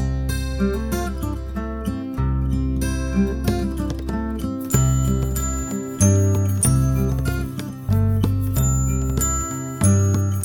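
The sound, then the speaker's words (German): Bright, chiming glockenspiel notes ring out over a steadily strummed guitar, playing a continuous, even-paced melody together at a moderate, constant volume with no voices. “Und jetzt hört ihr das Glockenspiel zusammen mit einer Gitarre.”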